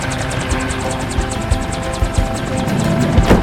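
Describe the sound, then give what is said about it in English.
A loud U.S. Army helicopter hovers, its rotor blades chopping in a fast, steady rhythm over a deep engine rumble, with no voices. “Wait, does that say U.S. Army on the helicopter?”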